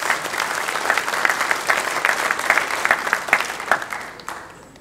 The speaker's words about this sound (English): Say, thank you, Lord. Yeah, we could all give Him a big hand clap for that. A praise clap right now.